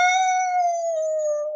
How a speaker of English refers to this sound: As the sunlight flooded the dark interior, the howling abruptly stopped.